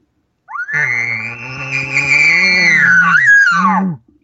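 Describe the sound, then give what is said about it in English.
A person imitates an elk's guttural lip bawl: one long, strained call lasting about three and a half seconds, rising quickly to a high, harsh pitch over a low rasp and holding steady before cutting off. “Now, if another elk really gets upset, he's going to lip ball. And so he's going to give more of a guttural sound like this.”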